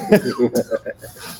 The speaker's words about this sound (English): Fine. Done. See, and it wasn't a coughing fit, but it had the potential to go left really fast. You've seen that.